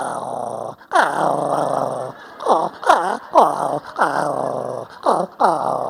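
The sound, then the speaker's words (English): A small chihuahua growls and yips in a quick series of loud bursts: a couple of longer snarling growls, then short rising yips in an uneven rhythm, with no talking. “And there are several kinds of dogs, right? There's the little chihuahuas.”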